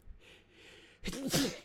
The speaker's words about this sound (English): Achoo!